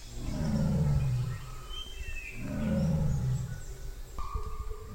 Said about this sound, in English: So I think the most interesting thing that happened in terms of sound was actually hearing the tiger's call.